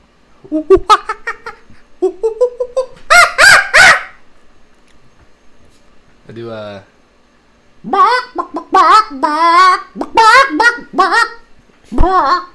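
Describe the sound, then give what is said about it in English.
A person vocally imitates a chicken with a series of loud clucks and squawky bursts, coming in choppy rhythmic runs with short pauses between them. “I do chicken noise.”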